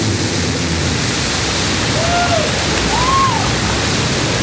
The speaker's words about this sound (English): T-10, 9, 10, 8, 7, 6, 5, 4. Command engine start. 2, 1. Ignition.